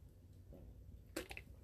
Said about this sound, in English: I'm going to take a quick drink.